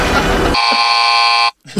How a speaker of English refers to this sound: And then the buzzer.